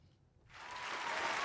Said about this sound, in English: So we gonna pipe up one time. Round of applause for everybody that's in the room. You heard?